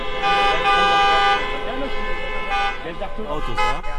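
Car horns blare in long, sustained, overlapping blasts over the low rumble of street traffic in Berlin, where cars cannot get through and are forced to make way for cyclists. Loud, with a rising, wavering tone near the end.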